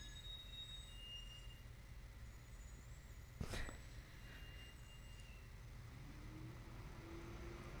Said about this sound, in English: I was going to say hold for truck outside.